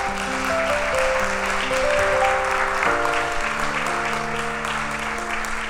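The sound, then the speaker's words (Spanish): An audience applauds steadily for several seconds, a dense wash of clapping, while sustained organ or keyboard chords hold and shift underneath. “¿Cuánto un aplauso a la misericordia del Señor?”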